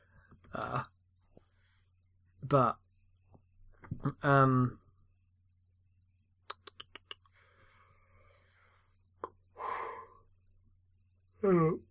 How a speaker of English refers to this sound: There's that yawning.